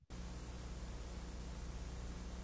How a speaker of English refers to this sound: Ooh, not the awesome sound quality, but. Oh boy. Oh, it's intentional with the static, maybe. I think so.